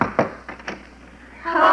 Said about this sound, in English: Well, that brings us to the last shack in Allen's Alley. Let's see what a knock here will do.